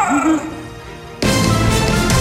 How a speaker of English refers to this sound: And dogs in distress.